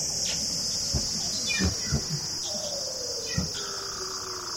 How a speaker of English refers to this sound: By examining the calls and looking at the DNA, the scientists can find out about the mating habits of the seals.